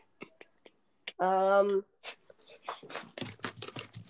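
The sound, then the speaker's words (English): Keyboard typing: a few sharp, scattered key clicks, a brief voiced hum, then a fast, uneven clatter of louder keystrokes running to the end. “Bro, you're typing really, really, really loud.”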